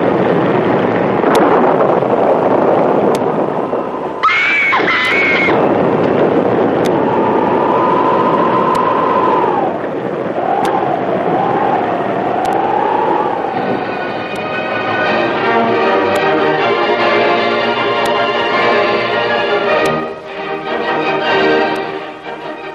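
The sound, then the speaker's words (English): Roaring wind and crashing water surge continuously on the storm-lashed deck of a ship, joined by creaking, groaning tones that rise and fall, with a dense harmonic rumble building toward the end as a huge wave breaks over the deck. “Just as Jim and Kitty edged along the storm-lashed deck, and they were within an arm's length of the door, a huge wave broke over the deck and swept them into the raging seas.”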